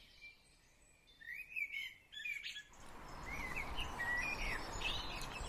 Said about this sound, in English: It's very early morning and I'm just emerging from last night. The birds are just waking up. There's a cold snap this week that hasn't been there for a while, and I'm off for an early morning walk. You can hear that dawn chorus.